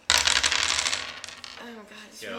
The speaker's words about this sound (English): How many dice were you rolling? Only four. Yeah, that was only four.